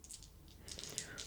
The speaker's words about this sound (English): Yes, you get an additional dice. An additional die?